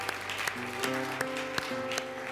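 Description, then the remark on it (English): An audience gives the Lord a hand clap, clapping in a steady, even beat, sharp hand claps landing roughly three times a second over sustained keyboard or organ chords, with no voices standing out. “the Lord a hand clap.”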